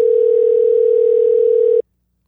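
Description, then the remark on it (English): A steady telephone dial tone hums loud for nearly two seconds while a call is being placed, then cuts off abruptly into silence. No one speaks. “We're going to give him a quick phone call. We'll see if we can get him on the line.”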